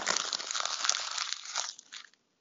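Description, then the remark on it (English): Paper notes being crumpled up to be thrown away, a dense run of crisp crinkling and crackling that fills about two seconds, fading in bursts before stopping abruptly. No voices. “Throwing my notes away because I didn't write anything else down.”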